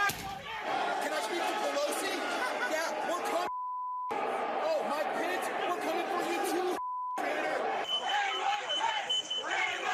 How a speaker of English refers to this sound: The violent mob of Trump supporters surging into the Capitol. This officer refusing to give ground, even as one man punches the glass behind him.